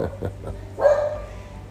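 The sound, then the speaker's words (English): A dog named Guapo, which wears a bark collar, lets out a single sharp bark, moderately loud, with a couple of softer muffled sounds just before it and no talking. “Oh, that's why Guapo has a bark collar.”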